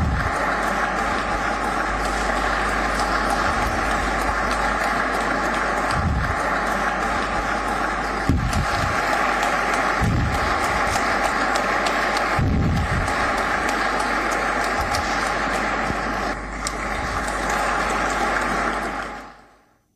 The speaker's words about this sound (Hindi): आज जब उन्हें पद्मश्री से सम्मानित किया गया तो पूरा हॉल तालियों के शोर से गूंज रहा था।